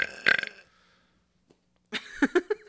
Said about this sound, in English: I think we just turned into like a professional belching contest.